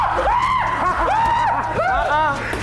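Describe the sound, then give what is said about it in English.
Loud, high-pitched screaming in three drawn-out bursts, each cry rising and then falling in pitch, with a steady rumbling noise underneath. “Who is screaming?”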